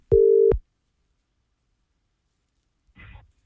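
A single steady ringback tone sounds loudly for about half a second, followed by a long silence and then a faint, brief breathy noise near the end.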